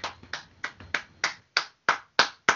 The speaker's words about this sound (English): Jim Benning. Just a round of applause for Jim Benning.